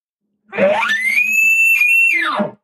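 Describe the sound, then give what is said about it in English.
A person imitates an elk bugle: one loud call that climbs from a low, raspy growl into a long, high, piercing whistle, holds steady for over a second, then drops back down to a grunt. “Yeah, you could see the emotion that was behind that bugle. Like that emotion is what elk respond to, man.”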